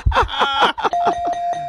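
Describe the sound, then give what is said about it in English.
A game show buzzer, hit by mistake, sounds: a loud, bright electronic burst of about six quick descending tones, then a steady held note that lingers to the end. No talking. “I hit the wrong buzzer.”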